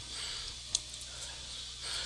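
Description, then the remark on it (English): A female pet dog pants with a steady, breathy hiss, broken by one short, sharp snort partway through. No one speaks, and a low hum runs underneath. “She starts panting a little bit more. Because she knows she's getting attention.”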